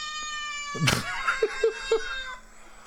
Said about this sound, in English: These are some annoyed cats. God, I love sound effects.